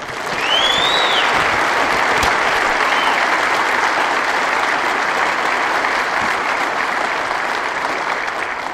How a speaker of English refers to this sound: Everybody clap for Joe.